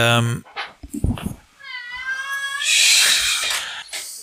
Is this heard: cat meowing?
yes